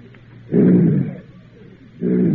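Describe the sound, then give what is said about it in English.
A person imitates a lion's roar with two loud, low, growling bursts, the first lasting about half a second and the second starting after a short pause. “What's next, castle boy? Oh, a lion.”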